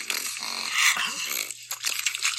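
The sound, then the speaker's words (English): A dog licking, making wet, smacking slurps and snuffling noises in a continuous messy stream, fairly loud with brief pauses. “That was actually dog licking”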